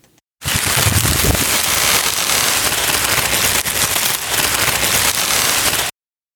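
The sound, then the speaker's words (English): Plants thrash their leaves in the wind, making a loud, dense crackling rustle that holds steady for about five seconds, then cuts off abruptly. No voices are heard. “Those are the sounds of plants.”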